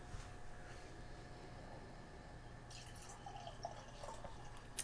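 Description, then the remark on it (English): A quiet pour of a straw-golden craft beer of 20 IBUs into a glass: a steady, soft hiss of liquid with faint splashing and small fizzy trickles growing in the second half, no voices. “Look how straw-like golden color this thing pours.”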